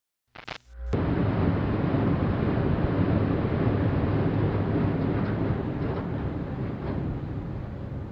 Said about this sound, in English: Journey up the elevator is uneventful during this time. The elevator appears to take longer as it passes by floor 13 and then 113, suggesting that entire floor was built and nothing put on it.